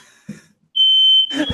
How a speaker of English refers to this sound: I think it's good. Like the smoke alarm, I think it's good though. It's good to have it going off, right? Because the alternative would be that there's no battery in it, right?